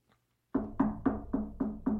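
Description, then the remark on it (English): Six quick, evenly spaced knocks on wood, loud and close, starting after a brief moment of silence and keeping a steady rhythm with a hollow, resonant thud on each hit. “I hear knocking on wood.”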